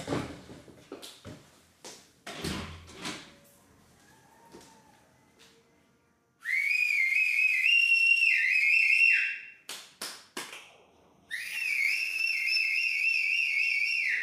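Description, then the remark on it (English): People outside in South Africa cheering for service men and women at 8 o'clock: scattered sharp clacks and knocks give way to two long, loud, shrill whistles, each held for a few seconds with a warbling pitch, separated by a short pause with more clatter. “It's 8 o'clock, and at 8 o'clock in South Africa, everybody goes outside and cheers for the older, for the service men and women at 8 o'clock.”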